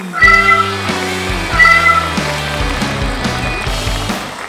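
A cat meows loudly twice, about a second apart, with steady low tones droning underneath.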